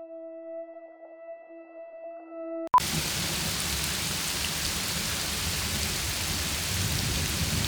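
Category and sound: nature, heavy rain with thunder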